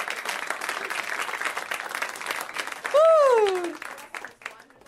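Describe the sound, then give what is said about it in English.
A burst of dense, steady clapping fills the first few seconds, then a loud, bending whoop rises and falls over it before the applause fades out. “Yeah, round of applause.”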